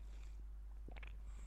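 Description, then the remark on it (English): A single soft swallow, a brief wet gulp with a couple of tiny clicks, over a low steady background hum. No one speaks. “Let me swallow.”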